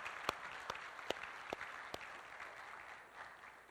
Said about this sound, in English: And I'd just like to give a round of applause for our worship team,